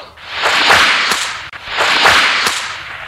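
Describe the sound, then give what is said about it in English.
A bullwhip cracks twice as a page-turn cue in a read-along story of Raiders of the Lost Ark, each time a rising whoosh ending in a sharp, loud snap. The two lashes are evenly spaced, with no talking. “You will know it is time to turn the page when you hear the bullwhip crack like this.”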